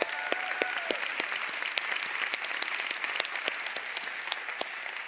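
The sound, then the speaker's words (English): An audience breaks into steady applause one morning to thank the church's community life pastors, a dense wash of many hands clapping at an even level for several seconds, with no voices over it. “Can we thank them this morning?”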